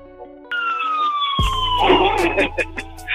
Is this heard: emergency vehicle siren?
yes